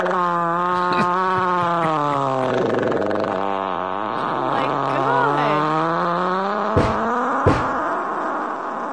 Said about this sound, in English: I've never seen a fart hit third gear quite like this.